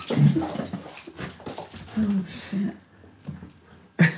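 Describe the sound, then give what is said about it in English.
A female dog doing nighttime zoomies, bunny-hopping with her legs, whimpers and growls in short, uneven bursts, with scuffling movement between the sounds and a sharp yelp near the end. “She's doing the weird bunny hop thing with her legs. Any dog owner will know what I'm talking about.”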